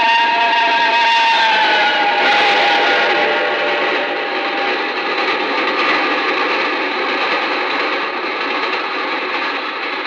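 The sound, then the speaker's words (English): A train thunders past and into a dark tunnel in a loud, continuous roar, shrill metallic screeching tones riding on top, holding steady for about ten seconds before easing slightly at the end; a sound effect in a radio dramatization of Charles Dickens' The Signalman. “It had smashed by like a wounded monster screaming in pain and disappeared into the dark tunnel.”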